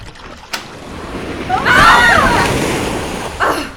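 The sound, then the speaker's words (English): Water surges and splashes in a loud, rushing swell that builds over a couple of seconds and slowly ebbs, with a sharp splash just before it and another near the end. “Doctor, it's either cast a spell and maybe die, or do nothing, let the water get over our heads and definitely die.”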